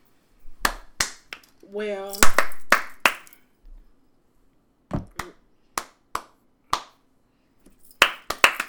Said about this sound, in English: Thank you. Golf clap.